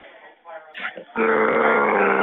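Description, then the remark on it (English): A person growls loudly into a recorded phone line, a long rough, sustained snarl that follows a few shorter grunting vocal noises, all with a thin, band-limited telephone quality. “Are you just going to keep growling at me every time I say something?”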